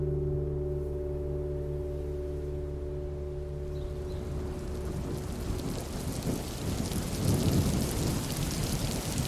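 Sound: thunderstorm with rain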